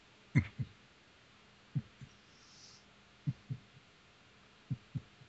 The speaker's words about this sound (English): You can feel the bed... beneath you, and a warmness on your chest, but all around the bed there is nothing, and in the distance you hear a heartbeat.